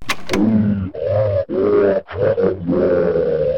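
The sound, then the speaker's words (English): Loud, guttural creature roars, recorded and played back at high speed, forming a run of four or five rapid bursts separated by brief breaks, sounding strained, with no talking. “So I recorded his roars and played them back at high speed.”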